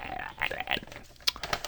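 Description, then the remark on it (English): Crisp rustling and crinkling of paper script pages being handled, a quick run of dry rattles and small snaps with no talking. “But lots of rattly paper.”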